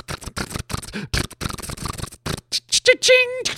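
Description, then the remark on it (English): Rapid-fire camera shutters clatter in dense, overlapping bursts, loud, like a crowd of photographers shooting at once; a voice briefly calls out near the end. “A lot of guys use them that film wildlife so that the animals don't hear the clicking noise.”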